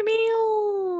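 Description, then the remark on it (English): A single drawn-out meow, voiced by a person imitating a cat, fairly loud, holding a steady, slightly falling tone for about a second with nothing else around it. “Say, meow, meow, meow. Can that be it? Meow, meow, meow.”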